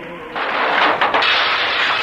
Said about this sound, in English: There! It just broke one of the living room windows. And there's a regular gale in this house, knocking pictures off the wall. Do you hear it?